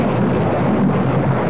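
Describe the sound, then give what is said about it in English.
A loud, steady rumbling roar of thunder from a lightning strike that hits a statue near a house, rolling on without a break, deep and broad with a hissing edge. No sharp crack stands out, and there is no talking. “The lightning hit it.”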